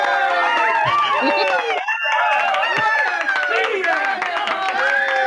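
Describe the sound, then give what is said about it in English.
A loud burst of ultra enthusiastic applause and cheering, included in a video filmed without a live audience, fills the whole stretch, dense clapping mixed with whooping crowd voices, steady throughout with a brief dip partway. “Yeah, well, last time we wanted the applause last time, and I filmed in front of a not live audience.”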